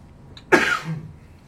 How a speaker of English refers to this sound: You better take care of that cough there.